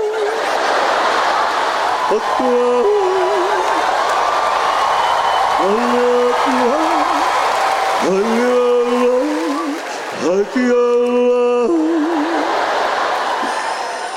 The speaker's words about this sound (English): You're clapping. I just made that song up. All I did was the vowels.